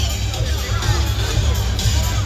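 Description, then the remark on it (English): Steady crowd babble at a theme park event as people work their way in through the crowd, a dense wash of overlapping voices with no single speaker standing out, holding at an even, moderately loud level throughout. “Cutting through the crowd.”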